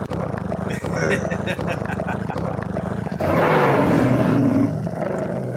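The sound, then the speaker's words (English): A deep, rumbling growl that swells louder partway through, sustained like a big cat's roar, with voices talking underneath. “Door over here like, hey, I like that growl sound.”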